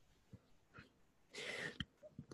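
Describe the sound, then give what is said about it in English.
A brief, muffled burp comes amid soft throaty noises and breaths, with a short rough gust in the middle and a low gulp at the end. Nobody speaks. “I don't know why I'm still burping.”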